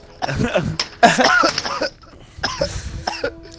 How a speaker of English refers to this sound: Do you mean that you start a coughing halfway through the bong hit, so it's just going stale?